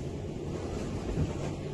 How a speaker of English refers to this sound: I told you it was windy. Classic British weather, yeah. Yeah. Very windy.